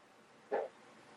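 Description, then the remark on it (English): A single short fart, a brief buzzy burst with a low, slightly tonal rasp that stands out clearly against an otherwise quiet background with no talking. “That was a fart, wasn't it?”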